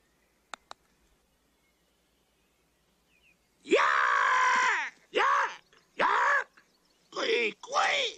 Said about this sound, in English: Seen anything like it? It's some kind of a bird. Are you hurt?